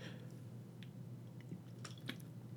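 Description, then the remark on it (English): Someone quietly sips water, with a few soft, wet mouth clicks and small slurping sounds over a low steady hum, and no talking. “You know, the portion of the podcast where I take a sip of the agua.”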